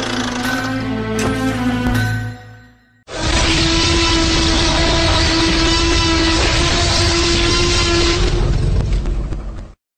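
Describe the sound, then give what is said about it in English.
A tonal, horn-like blast fades out, then a train, presented as the lightning rail of the Eberron setting, roars along the rails in a loud, steady rumble with a sustained droning tone, cutting off abruptly at the end. “So everybody, climb aboard the lightning rail and join me as we look into the steampunky world of high adventure as presented in Eberron Rising from the Last War.”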